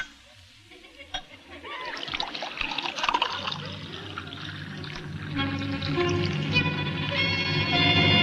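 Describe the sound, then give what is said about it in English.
Homemade elderberry wine pours steadily into a glass, a gurgling stream whose pitch climbs as the glass fills over several seconds, with a few faint clinks and splashes early on. “Go ahead, Martha. Pour him a glass.”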